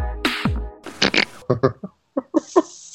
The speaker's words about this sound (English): Did somebody just make a fart noise? I heard it too.